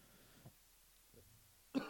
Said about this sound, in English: Sorry, I'm almost out of the woods on being sick, so you won't have to hear me fucking turn around and cough.